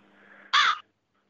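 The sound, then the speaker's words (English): A single loud, harsh caw from a crow inside a room, cutting off abruptly after a moment, preceded by a quieter steady droning tone and followed by silence. “The crow says it's not a joke.”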